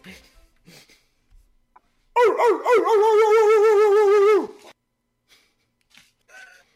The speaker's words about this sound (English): Stupid dogs. Get on the couch, you damn dummies.